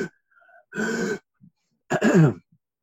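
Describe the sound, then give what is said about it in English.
A voice imitates stridor, the noise a patient struggling with their airway makes when breathing in, with two harsh, raspy breaths in, each lasting about half a second, with a strained whistling tone running through the rough noise, separated by a short pause. “And stridor is a funny noise when you breathe in. It goes...”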